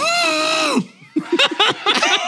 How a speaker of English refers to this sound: Now you did sound like the elephant. I'm pretty sure this is a moose call. What would a moose call sound like?